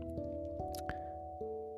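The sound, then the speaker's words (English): Someone drinking water from a glass bottle, with a few gulps and soft wet clicks over a resonant, hollow tone that shifts in pitch as the liquid moves. “You know, this is really, I could see why they serve milk in those glass bottles back in the day. This is really the way to have your water, especially if you're recording.”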